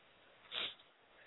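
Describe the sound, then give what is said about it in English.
A single quick, breathy sniffle, rising and fading in under a second against quiet background hiss, with no talking. “I'm sniffling because actually I am a little sad right now, so it's like, oh my gosh, I didn't realize it was going to be sad like this.”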